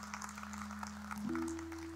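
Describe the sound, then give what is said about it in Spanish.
A church audience applauds the Almighty Lord at an afternoon service, with steady, dense clapping throughout, moderately loud, while a sustained low tone hums underneath and steps up in pitch partway through. “Vamos, un aplauso a nuestro Señor Todopoderoso.”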